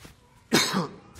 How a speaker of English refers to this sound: I'm trying to cover this when I cough.